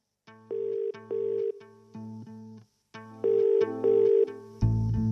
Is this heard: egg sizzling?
no